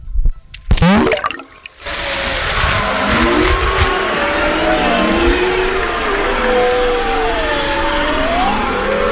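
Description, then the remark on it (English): Underwater chorus of bearded seals, beluga whales and a couple of walruses in the ocean: overlapping rising and falling whistles, warbles and long gliding trills over a steady hiss, after a brief choppy burst at the start. “You hear bearded seals and beluga whales and a couple of walruses.”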